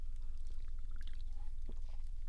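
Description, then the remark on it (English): Monster energy drink pours steadily from a can for a couple of seconds, with bubbly splashes and fizzing crackles over a constant low background hum; no one speaks. “Let's drink some Monsters.”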